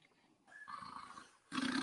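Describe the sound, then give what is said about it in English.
An unconscious man snoring loudly: a long, harsh, rattling inhale followed by the start of another raspy, growling snore, with no talking. “Snore. And you can see his belly. Yeah, he's snoring.”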